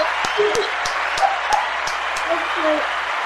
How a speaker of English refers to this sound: And the crowd goes wild, Rocky. Woo. He loves that.